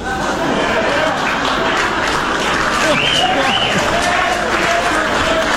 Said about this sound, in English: The mix of reactions is the funniest part. Yeah, you can hear people's brains. Do I clap for this, or am I on camera? What am I supposed to do here? Do I? Immediate cheer, whoops of laughter, groans of horror.